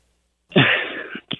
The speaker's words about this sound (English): He was just clearing his throat. No, he hesitated.